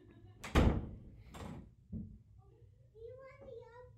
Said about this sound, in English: All right, well, I'm recording something now. Can you get out, please? Close the door. Don't let it hit you on the way out.